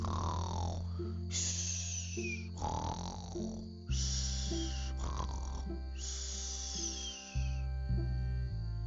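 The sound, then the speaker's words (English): Loud snoring from a man asleep on the floor: a series of long, rattling, buzzy snores repeating in a steady rhythm over a constant low drone, with no talking. “So tired that he has fallen asleep. on the floor right after pulling Teddy out from under the couch. He is lying there snoring loudly.”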